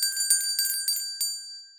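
A bright, high-pitched bell rung in celebration by Catapult Leaders rings in quick repeated strikes, about five in a row, its clear metallic tone lingering and fading at the end. No voices are heard.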